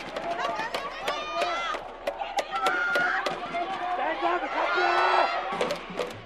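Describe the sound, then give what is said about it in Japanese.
A loud arena crowd of many fans supporting Kagawa cheers and shouts continuously at a basketball game in overtime, with 2.8 seconds left and the team one point behind. Sharp thuds and high squeaks from sneakers on the court cut through the roar of many voices. “そして1点リードされて迎えた残り 2.8 秒、香川に駆けつけた多くのファンからは勝利を信じて大きな声援が送られます。”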